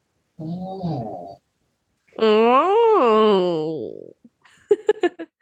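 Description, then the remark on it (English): A cat snores loudly in drawn-out, wavering, moan-like breaths: a short one, then a longer rising-and-falling one, ending in a few quick snuffling pulses. “My cat is snoring so loud.”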